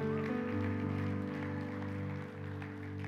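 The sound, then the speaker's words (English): In a church, a crowd gives God a round of applause, clapping steadily for a few seconds, the applause blending into a sustained, low keyboard chord that holds throughout, with no voices standing out. “But when you do something in the church, come on, let's give God a proper round of applause.”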